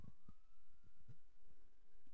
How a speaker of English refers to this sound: I live off of, I live in a bad neighborhood, okay? Yeah, no. You hear the sirens? I do. It's constant here.